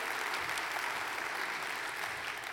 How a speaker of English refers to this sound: And so give all of these folks who have served our church so well a big round of applause. We're so grateful for their service.